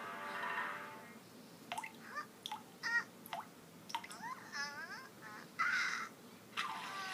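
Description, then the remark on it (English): Five raindrops falling onto Pinkerton's head in a short irregular series of soft, watery plinks and plops, some with a bright bubbly pitch, each drop separate and the whole thing fairly quiet with no talking. “Five raindrops fell onto Pinkerton's head.”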